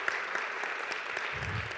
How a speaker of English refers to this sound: We can give them a round of applause, a thunderous round of applause.